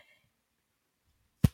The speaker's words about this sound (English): This should be your first slap.